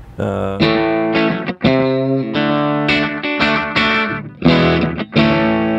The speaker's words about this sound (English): Sometimes I'll kneel down during the show and mess around with knobs or whatever. My carbon copy. You know, it's a little delay for if the song calls for it.